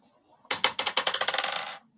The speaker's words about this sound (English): Make a d20 roll for me.